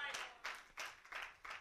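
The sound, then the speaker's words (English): A faint, steady run of about five claps at an even rhythm, like an audience clapping along in time. “Don't clap if you're not going to do it when you get lonely.”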